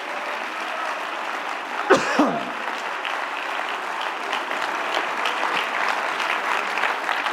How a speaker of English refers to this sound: And if you want God, you can have it. Clap your hands if you're thankful for that.